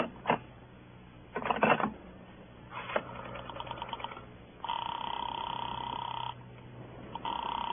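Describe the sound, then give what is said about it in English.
Mechanical clicks and rattles of a phone being dialed to place a call to Sing Sing give way to a steady, muffled telephone ring tone that sounds twice through a narrow, tinny line. No one speaks. “I watched Nikki's face as I waited for the call to go through”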